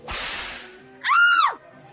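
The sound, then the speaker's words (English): A single sharp whip crack snaps loudly as a whip strikes a person and trails off, followed about a second later by a brief, high-pitched cry of pain. “Hit me with your whip, will you?”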